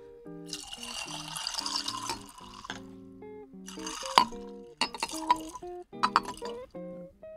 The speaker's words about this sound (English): You know, the rest I'm going to just pour it right in the glass. Uh-oh. I don't want to lose too much of the fizz.